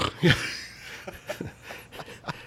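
A sharp slurping inhale as air is drawn in while sipping beer, followed by a few soft, scattered mouth clicks and light breaths, with no talking.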